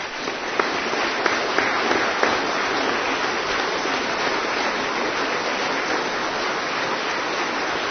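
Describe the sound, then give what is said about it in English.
A crowd applauds steadily, a dense wash of many hands clapping at once that stays loud and even for the whole stretch, with a few sharper individual claps standing out early on. “So as we clap, we're including all of these people.”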